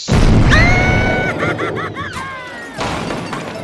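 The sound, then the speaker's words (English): A loud cannon blast booms out as a person is fired from the cannon, followed by a wavering, whistling whine like something hurtling away, then a second rumbling burst near the end. “An intern with no coffee? Into the cannon.”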